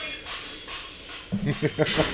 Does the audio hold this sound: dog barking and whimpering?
yes